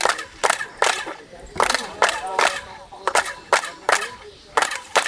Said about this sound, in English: and as tours reach the famous main pyramid, the guides stand a few meters back and ask everyone to start clapping their hands. When you clap your hands, what you get is you get a chirping sound.